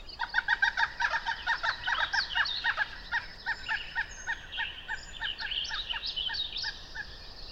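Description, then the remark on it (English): A pileated woodpecker calls loudly in a national park, a rapid rhythmic series of ringing, clucking notes that repeats in bursts for several seconds with no talking. “The pileated woodpecker again. It's so loud.”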